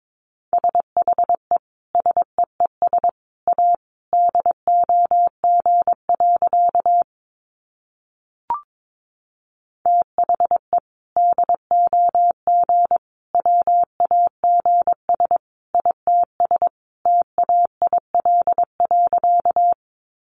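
Morse code at 22 words per minute: a single steady mid-pitched tone keyed in quick dots and dashes, running in two long bursts separated by a brief pause with one short blip.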